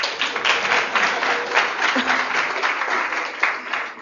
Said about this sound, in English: Because tonight, this is one of our special Writers Live series. And there are people that are coming in now at 7 to hear our special guest, Mr. Ron Shapiro. You can clap again.